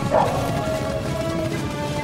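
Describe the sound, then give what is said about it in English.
Wolves snarl and bark in a steady, dense burst of growls and yips, with a thin tonal whine running underneath, in a scene from the film Frozen. The sound stays loud throughout, with no talking. “What are they? Wolves.”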